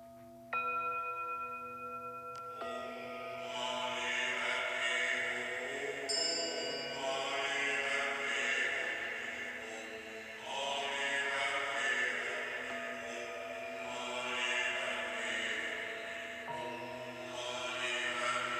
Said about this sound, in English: Listen now to a group of Buddhist monks chanting the Om Mani Padme Hum mantra. I think you'll find it very beautiful.